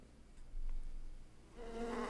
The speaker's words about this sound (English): Bees!